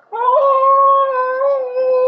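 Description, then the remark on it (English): A single voice holds a long, steady, tonal wail that rises slightly in pitch, imitating whale song. It is loud, with no talking around it. “It's like whale songs.”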